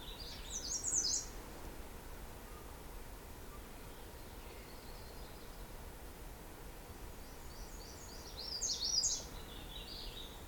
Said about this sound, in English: I think that might be a Canada warbler. Yeah, that one.